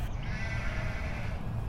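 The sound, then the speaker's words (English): A goat bleats in a long, wavering cry that fills the whole moment, over a low rumbling farmyard background, with no voices. “He cleaned the chicken coop and fed Big Mama's herd of blind goats.”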